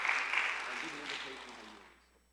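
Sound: audience applause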